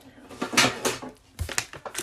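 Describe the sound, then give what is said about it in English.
Scissors snip through the crinkly plastic wrapper of a Mr. Beast peanut butter chocolate chip cookie package in a few sharp, bright bursts, with a short pause before a second round of quick cuts and rustling. “Oh, that's not how you open it. Time to use the scissors.”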